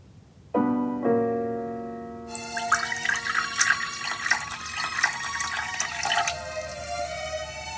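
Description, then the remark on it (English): Coffee is poured steadily into a cup for several seconds beside a Christmas tree in the living room of a student home in Ottawa, a bright gurgling stream that follows a ringing ceramic clink at the start. No one speaks. “Here I am, pouring myself a cup of coffee beside the Christmas tree in the living room of my student home in Ottawa,”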